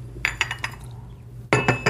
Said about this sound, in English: kind of a slurp, the coffee cup goes down.